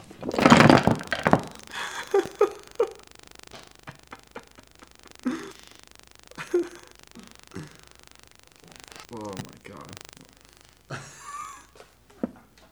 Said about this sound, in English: knocked over all the beans. Well, a good quarter of pretty them.